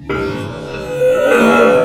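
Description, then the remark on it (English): A belch slowed down into a long, deep, drawn-out groan with a buzzing harmonic tone, swelling louder partway through and lasting nearly two seconds, with no talking. “Oh, a belch. Our first belch of the proceedings, listeners. Let's just hear that in slow motion.”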